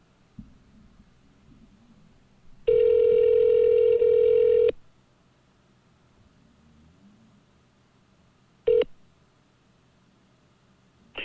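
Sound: telephone dialing and ringing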